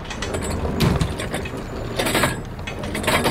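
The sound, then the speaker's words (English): A mechanical lift raises a wheelchair onto a bus, whirring and grinding steadily, with clanking ratchet-like bursts around the first and last seconds over a continuous low motor hum; no one speaks. “Can we get Shane's wheelchair onto the bus?”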